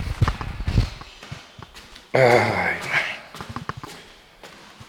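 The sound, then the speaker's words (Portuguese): Footsteps climb a stairwell, a run of regular steps with a hard, echoing ring, then a louder rustling burst in the middle as a voice briefly exclaims. “Vamos então subir, está aqui um eco bravíssimo.”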